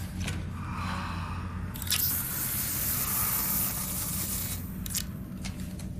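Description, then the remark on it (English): Antiseptic spray hisses in a sustained, broad spray through most of the six seconds, with a brief stronger burst near the middle and a short puff near the end; no one speaks. “Man, that's some good antiseptic spray.”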